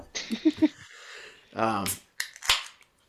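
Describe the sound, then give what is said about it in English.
A beer bottle cap pops off with a couple of sharp clicks and a short fizzy hiss, followed by a brief voiced sound and a few more quick taps, as the beer is opened to be poured into a Sam Adams Perfect Pint glass. “So let's pop this open. And I'm going to pour this into it.”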